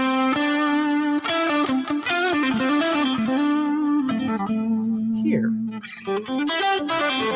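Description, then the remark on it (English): A run of low electric guitar notes with a thick, fuzzy, buzzing tone, played one after another in a steady stream with a short pause near the end, loud and without voices. “See how these sound really kind of fuzzy and.”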